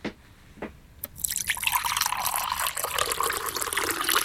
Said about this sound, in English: Matt, could you please make your way over to the pouring area? Have jug, will pour.